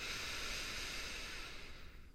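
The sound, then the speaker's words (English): A slow, quiet breath drawn in through the nose, a steady airy hiss for about two seconds that tapers off at the end, with no talking. “Notice the rise and fall of your chest as you inhale”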